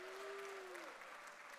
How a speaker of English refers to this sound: We've got some great speakers who are going to be here, like Reverend Mike Tapper is going to be preaching. An easy way to get applause out of you is just say Mike's name and get applause.